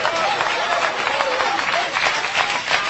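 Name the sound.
audience applauding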